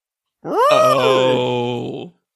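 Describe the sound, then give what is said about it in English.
A voice imitates an elephant with a loud, sustained trumpeting call that rises sharply then holds a strained, buzzy tone for about a second and a half before cutting off. “Elephant noise.”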